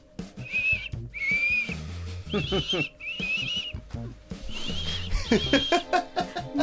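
Someone whistles a short, clear melody in several breathy phrases of rising and falling notes, with faint chuckling and low murmuring underneath.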